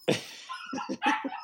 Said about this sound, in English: That dog is lit, boy. that dog agrees with something I'm saying. That'd be litty. That dog agrees with something.